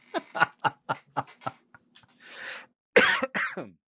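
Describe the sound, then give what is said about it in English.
A quick run of chuckling bursts gives way to a breathy cough, then two loud, harsh coughs very close to the microphone, sharp and overdriven. “Sorry, I just coughed like right into the microphone.”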